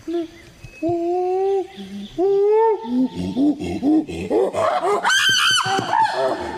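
Chimpanzees communicating: calls build from drawn-out hoots into rapid, breathy panting cries, peaking in loud, piercing shrieks and screeches before tapering off, without any talking.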